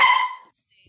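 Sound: dog barking excitedly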